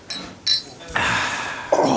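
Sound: glasses clinking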